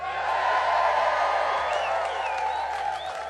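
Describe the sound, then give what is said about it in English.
An audience at the WOMAD festival, sitting on the grass in the Arboretum among gigantic trees, cheers outdoors under clouds in a loud, steady roar of many voices, with a few high whoops and whistles rising above it for a few seconds. “And we always have such a wonderful audience. I'm looking across a sea of faces sitting across the grass.”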